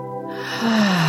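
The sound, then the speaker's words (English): A single deep breath drawn in through the nose during a guided relaxation breathing exercise, a breathy hiss that swells steadily louder over about a second, with soft sustained tones humming underneath. “Letting everything go, clearing our mind, taking another breath, nice and deep this time.”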